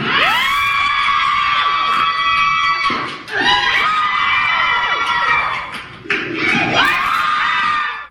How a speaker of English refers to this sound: What is that sound? What is that cheering? That is a Las Vegas woman crushing 3 watermelons in 7.5 seconds with her thighs, making it a world record.